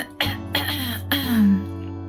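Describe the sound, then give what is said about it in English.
Three quick coughs in close succession inside a car being driven, followed by a voiced, grumbling throat clear. The sounds are fairly loud over a steady low engine-like hum. “Excuse me? There's cough drops in the glove compartment.”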